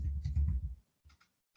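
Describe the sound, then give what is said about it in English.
A quick flurry of low, muffled keyboard thumps, followed after a short pause by a few separate soft taps, fairly quiet. “I can hear the thumping. Sorry, that was my keyboard.”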